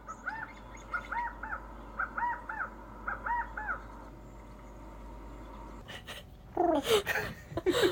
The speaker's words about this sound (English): There's a lot of quail too. I love the quail. Yeah, the California quails are beautiful. They're so, so cute. Yeah. They make the cutest little noise. Yeah, they're adorable. Yeah. Kyle, insert quail noise here.